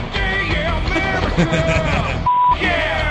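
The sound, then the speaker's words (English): A single short, steady electronic beep, like a censor bleep, briefly cuts in over busy, overlapping voices and then drops away as the chatter resumes. “I was hoping that beep would be there.”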